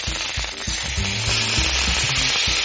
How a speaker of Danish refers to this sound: Nu kan jeg se den pæne sprøde overflade, og det er grunden af, at vi har stegt det i olie, der kan tåle højere grader på en pande, der kan blive rigtig varm.